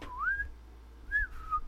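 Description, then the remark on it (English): A person whistles an eerie two-part tune: a smooth rising glide, a short pause, then a second note that peaks and slides back down, imitating a signal whistle. “Anybody who's ever played a Splinter Cell game will understand that whistle.”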